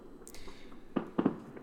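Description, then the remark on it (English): Fireworks going off on the 4th of July: a single muffled bang followed a moment later by a quick double crack, set against a quiet background with no one talking. “It's 4th of July. You hear them fireworks going off?”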